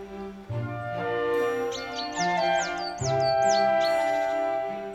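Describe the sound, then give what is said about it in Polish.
Small birds chirp at a garden feeder in a quick run of repeated, high, sweeping tweets that last a couple of seconds, heard over a steady backdrop of sustained musical tones, with no one talking. “To właśnie ta karma jest podstawową dietą ptaków, które przylatują do mojego ogrodu.”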